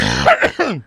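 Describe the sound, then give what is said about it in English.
A fairly loud bout of coughing and throat clearing, a few rough bursts in quick succession ending in a gravelly, drawn-out clearing of the throat. “All they do is cough.”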